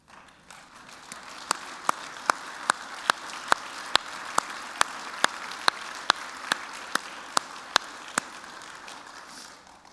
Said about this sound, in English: So all of you who are mothers, please stand up and let us applaud you.